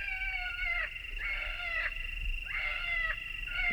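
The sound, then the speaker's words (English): A recorded wounded-rabbit distress call played from a pickup truck in pale, fading light while hunters try to draw coyotes down off a ridge: a series of about four high, drawn-out squealing cries with wavering pitch, repeating steadily over a low background rumble, with no talking. “And from their pickup truck comes the recorded call of a wounded rabbit.”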